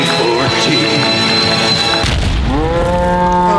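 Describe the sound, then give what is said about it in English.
A cow moos loudly in a long, strained bellow that shifts pitch, with a heavy low thump midway and a rising moan at the end. No one speaks. “That poor cow.”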